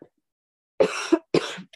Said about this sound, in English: Perfectly timed cough.